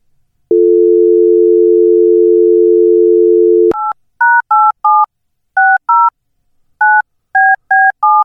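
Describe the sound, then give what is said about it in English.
A steady, low telephone dial tone hums for about three seconds, then gives way to a quick series of about ten touch-tone dialing beeps in uneven bursts, loud and clear with no voices, as someone phones the Crow's Nest in Washington and gets a busy signal. “So let's call the old Crow's Nest in Washington and find out just what's happening.”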